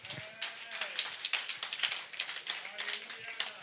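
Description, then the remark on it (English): A seated audience claps for the Lord steadily for several seconds, a dense, crackling wash of many hands with no pauses, while voices call out faintly beneath the applause. “So I want you to just, even be seated, don't stand, clap for the Lord.”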